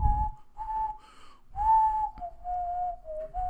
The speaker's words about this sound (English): I don't know that I whistled it that way